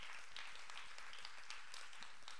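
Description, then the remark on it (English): A church crowd claps steadily for the tech team throughout, a dense, fairly soft patter of many hands with no voices over it. “You guys, would you clap for the tech team?”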